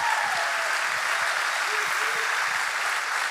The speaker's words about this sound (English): Can you welcome them? Clap for them as well.